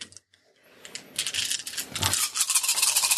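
Four dice rattle and clatter, a dense run of sharp, bright plastic clicks that starts after a short quiet moment and grows busier and louder toward the end, with no voices, rolled for a fight action in a game.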